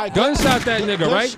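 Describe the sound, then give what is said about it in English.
A voice mimics a gunshot sound effect: a loud, noisy burst followed by sliding, warbling vocal tones, lasting just over a second with a second swell near the end. “Gunshot for being incorrect.”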